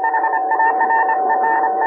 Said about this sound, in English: A little more. What's that low hum I hear? That's the carrier wave. Yes, here it comes.